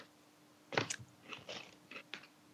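crunching potato chips

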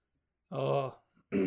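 throat clearing

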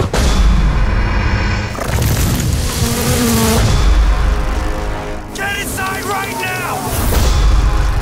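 buzzing swarm of wasps

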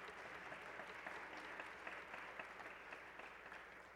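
audience round of applause

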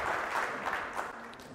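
audience clapping

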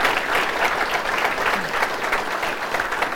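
applause

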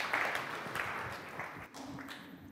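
group clapping

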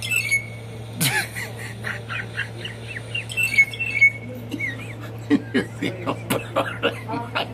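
bird squawking

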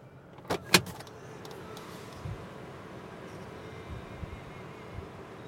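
car door being opened

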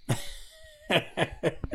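coughing

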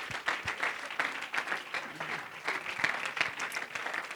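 audience hand clapping

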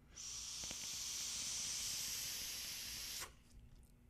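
vaping

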